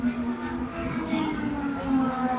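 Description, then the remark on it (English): A steady, droning engine hum holds at a constant pitch as race cars, including the Kelly Moss Porsche, are set up at a racetrack before going down a runway onto the track to start the race, with a faint whir of other machinery underneath and no sharp passes. “And as you can see, they're setting all the cars up, and they will go down this runway here and go onto the track as they start the race.”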